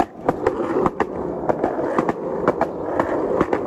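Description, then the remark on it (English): A skateboard rolls steadily over pavement in downtown Salt Lake City, skating towards the car, with a continuous gritty rumble, punctuated by sharp, regular clacks roughly every half second as the wheels hit cracks in the sidewalk. “It feels good to get the skateboard back. It's been a while, though. We're skating towards the car.”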